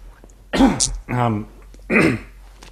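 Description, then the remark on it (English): Loud coughing, two rough hacking bursts with a short voiced throat-clearing rasp between them, set against a quiet background. “Sorry, I just had to like cough.”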